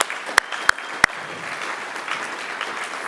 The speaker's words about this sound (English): But also, your work has not gone unnoticed. I was wondering if we could just maybe give those people a round of applause.